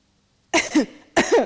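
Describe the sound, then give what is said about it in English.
Two short coughs used as a yes/no code signal, each a sharp burst with a rougher voiced tail, separated by a brief pause after a moment of silence. No one speaks. “On reflection, the cough method was probably the wrong idea during the pandemic, I think.”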